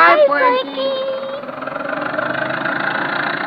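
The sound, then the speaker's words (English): An old car engine idles loudly, a steady rumbling chug with a fast, rough pulse, preceded by a brief vocal sound at the very start. “Whoa, little old car. Whoa, doggone it.”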